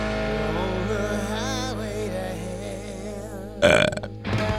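A voice burps out a rock song melody in long, wavering sustained belches, pitch sliding up and down over steady backing music, ending with a louder, rougher burst near the close.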